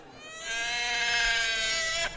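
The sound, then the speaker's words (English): A child screams in one long, shrill, sustained wail lasting nearly two seconds, loud and steady in pitch, then cuts off abruptly with a brief catch at the end. No talking. “Just as I'm about to poop on that child's memories if they don't stop screaming.”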